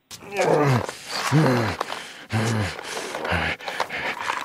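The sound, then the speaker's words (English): A werewolf's deep, snarling roar rises twice in long, strained bursts, followed by shorter guttural growls, loud. “I may not hurt you, but the wolf might.”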